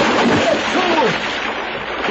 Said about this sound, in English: Oh! Yeah, someone's jumped in a pool. Do you hear the splash?